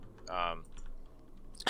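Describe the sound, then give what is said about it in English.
A short burst of computer keyboard typing, scattered keystroke clicks, briefly overlapped by a voice, ending in a sharper louder tap. “What are you typing?”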